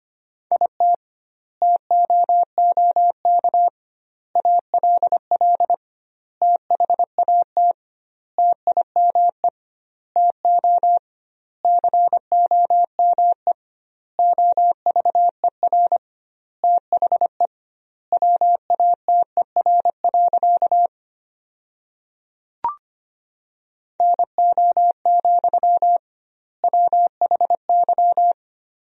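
Steady single-pitch Morse code beeps keyed at a brisk 25 words per minute with doubled word spacing, sending sentences made from the 300 most common words, quick dots and dashes in clusters separated by short silences, with a brief click near the end and no voices.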